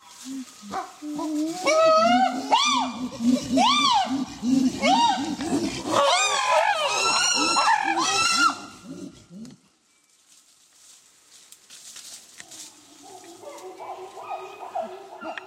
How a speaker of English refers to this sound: And so let me show you a brief clip of pant hooting from my colleague Zarin Machanda at Tufts to give you a sense of this. This is chimpanzee pant hooting taken at her field site.